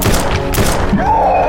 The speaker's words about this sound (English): Alright, you fire three shots into the back door. With the last shot, you hear a shriek of pain from a creature behind the door.